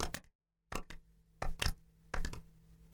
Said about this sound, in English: Since it's the start of rainy season, why don't we learn the rain clap? First, you silently rub your fingers together. Rub your 2 hands together, making a very soft sound. Softly clap your hands together.